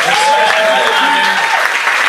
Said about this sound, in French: Merci, on applaudit encore ….